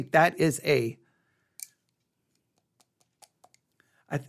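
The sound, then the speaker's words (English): Pencils being fiddled with in hand: a scattering of small, faint clicks and taps at irregular intervals, bracketed by a voice speaking briefly at the start and end. “I got pencils in my hand. I'll put them down.”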